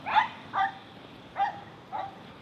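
small dogs barking

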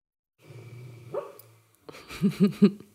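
dog barking softly

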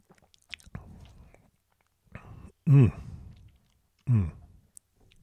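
sipping wine

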